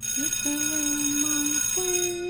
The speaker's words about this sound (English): let me ring the bell on this one. I need to ring a bell here.